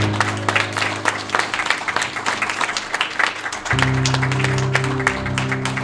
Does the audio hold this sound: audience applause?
yes